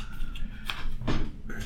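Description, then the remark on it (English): Playing cards being shuffled by hand for a card game, in a few short, papery riffling bursts, spaced unevenly over a steady low background hum, with no talking. “Can you hear the cards being shuffled?”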